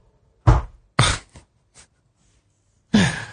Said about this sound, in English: Yeah, but you're opening the door.